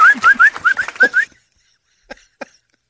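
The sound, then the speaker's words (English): A quick run of about seven short, rising whistles, loud, repeated in a steady rhythm for about a second, then silence broken by two faint knocks. “Halftime, you think your landscapers are whistling to each other.”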